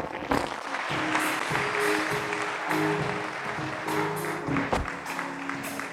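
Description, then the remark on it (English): A crowd claps steadily for several seconds, a dense wash of overlapping hand claps with faint sustained tones and murmuring voices underneath. “Why don't you clap your hands?”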